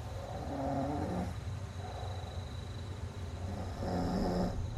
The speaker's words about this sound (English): I didn't realize he snores. Do you hear that? Turn it up, you'll hear it.